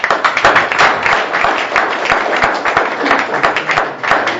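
A crowd applauds steadily, dense overlapping claps forming a loud, continuous patter with no clear pauses, and a few sharper individual claps standing out.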